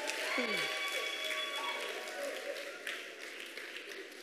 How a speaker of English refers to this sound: Clap your hands.